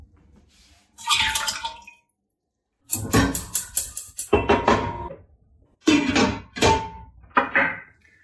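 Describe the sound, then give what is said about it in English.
About 4 cups of meat stock (chicken or beef) are poured into the pot the cabbage was cooked in, after the cabbage water was tipped out. It comes in several splashy bursts with brief pauses between, a gurgling rush of liquid against metal and no voices. “So I'm just going to, I've just tipped out the cabbage water and I'm going to heat that stock up in the pot that I had the cabbage cooking in.”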